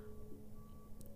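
Steady low mechanical rumble of construction machinery outside, where new condos are being built, with sustained tonal hums and a few brief high-pitched chirps near the end, fairly quiet overall with no talking.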